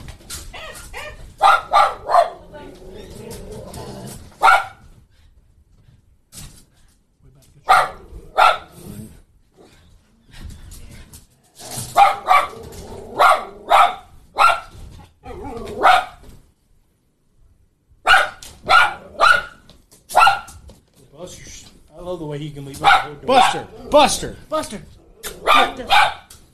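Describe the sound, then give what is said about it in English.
A dog barks loudly, firing off rapid bursts of sharp barks separated by short pauses, with the clusters repeating throughout. “That dog can leap little I've ever seen.”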